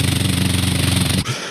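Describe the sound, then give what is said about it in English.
A rapid, steady drum roll of fast, evenly repeated hits holds at a loud, constant level for just over a second, then cuts off abruptly, leaving a faint low hum. “Drum roll, please.”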